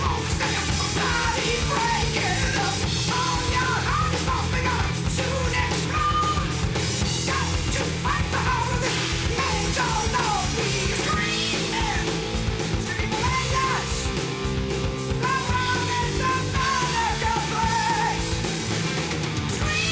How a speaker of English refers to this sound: It should really be our, are you still screaming? Our Banshee Metal episode, you know? Yeah. Still screaming.